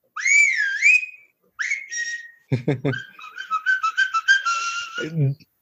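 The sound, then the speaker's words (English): A string of electronic whistle sounds played by a dog selfie camera phone app: a wavering slide-whistle tone, a short rising whistle, then quick chirping bursts and a trill, ending with a low falling tone. Fairly loud, with no talking. “this is the thing which actually when Snoopy loves the whistle sounds”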